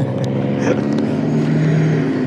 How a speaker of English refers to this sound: there's a big truck in the background.